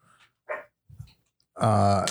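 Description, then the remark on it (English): A dog barks a few times: two short, soft yips followed by a louder, drawn-out bark that rises at the end, heard on its own without talking. “And I keep got kid and dog in the background.”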